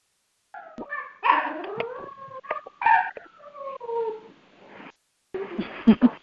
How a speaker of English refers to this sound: That's my puppy.